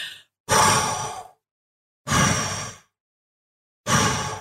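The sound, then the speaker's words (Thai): Three strong, breathy exhales blown through pursed lips, each lasting about a second with a whooshing rush of air, separated by short silences, loud with no talking. “สิ่งที่เราจะต้องทำค่ะคือคล้ายๆกับการเป่าปากหรือการพ่นลมหายใจออกมาแรงๆอะค่ะ”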